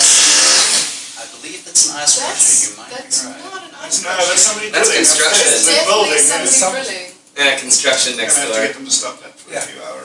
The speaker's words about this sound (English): That's not an ice. That's construction. It's building. Construction next door. It's in this building. It's definitely over there.